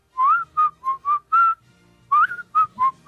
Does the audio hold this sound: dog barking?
no